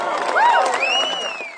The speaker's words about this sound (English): Unlike McKee, the only thing drowning Haruera out were cheers and applause.